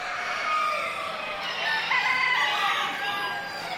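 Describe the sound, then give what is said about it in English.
Several roosters crow over a dense, continuous chorus of clucking chickens at a poultry show in western Massachusetts, a busy, crowded din of poultry with overlapping calls, moderately loud throughout. “as you'll hear in this sound montage from Living on Earth's Diane Toomey, these birds can strut their stuff”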